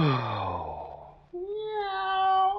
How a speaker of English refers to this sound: A cat talking to the moon.